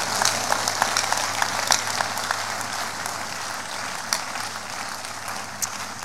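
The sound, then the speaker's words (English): A large crowd at a church service applauds steadily for several seconds as a clap offering to the Lord, a dense wash of many hands clapping at once with a few sharper claps standing out. “Give the Lord the biggest clap offering.”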